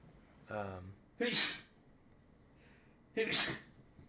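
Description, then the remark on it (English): Two loud, sharp sneezes about two seconds apart, the first preceded by a brief voiced intake of breath, with a faint breathy sound between them. “Yo, who be sneezing back?”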